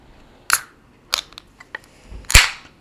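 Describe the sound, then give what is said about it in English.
A can of cannabis-infused double IPA beer (7% ABV) being opened: a few sharp metallic clicks as the tab is worked, then a loud crack with a short fizzing hiss trailing off. No one speaks. “Oh my gosh, that was a satisfying crack.”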